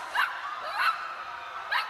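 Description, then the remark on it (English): A female dog lets out three short, high-pitched whimpering yelps, spaced unevenly over a couple of seconds, moderately loud with no talking. “This dog has a strange aura to her.”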